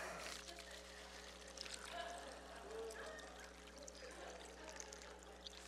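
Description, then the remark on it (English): Water is poured back into a container after a newspaper illusion, a steady, continuous splashing trickle lasting several seconds over a low background hum, with faint murmuring voices. “I don't know about you, but I like to conserve water. I don't like to waste it even for illusion. So let's just put it back inside there.”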